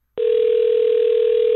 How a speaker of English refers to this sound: Hey, hey, we're calling. Calling you on your phone. That's a little dialing music. It's nice.